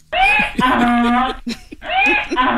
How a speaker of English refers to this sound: Now, I didn't hear the whole donkey.